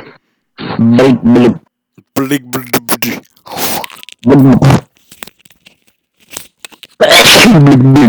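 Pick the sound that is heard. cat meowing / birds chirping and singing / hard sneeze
hard sneeze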